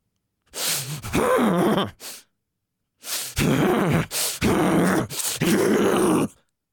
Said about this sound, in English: That kind of forced, deep, stressful breathing that shocks the body is a guff huff. Now, I want you to hear it one more time.